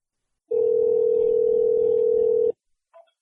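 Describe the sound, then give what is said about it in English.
A telephone call to George R. R. Martin being placed: one steady, clear phone tone holds for about two seconds, then cuts off, followed by a faint brief click. No one speaks. “Well, let's travel back in time to May and get George R. R. Martin on the phone.”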